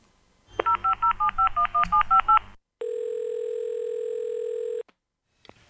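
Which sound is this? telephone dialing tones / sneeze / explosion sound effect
telephone dialing tones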